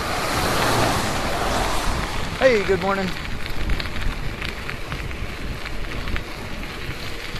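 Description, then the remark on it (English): Continuous wet hiss and swishing wash of car tires spraying water off a soaked road on a warm, very rainy Monday morning, with a brief tonal chirp partway through and a man speaking a short greeting over it. “We got a lot of spray coming up off the cars here.”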